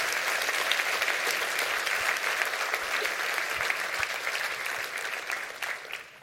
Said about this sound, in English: Clap your hands and rejoice because the word has come through.